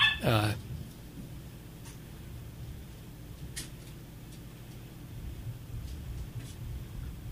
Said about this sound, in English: My puppy yelping in the background. She's 8 months now. Starbuck, the toy Labradoodle, part toy poodle, part Labrador.